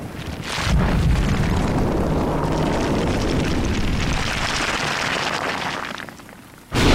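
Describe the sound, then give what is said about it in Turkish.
Heavy rain pours down outside in a loud, dense, steady hiss for about six seconds, starting and cutting off abruptly, with no voices. “Dışarıdaki yağmur sesini dinlemeye başlamış.”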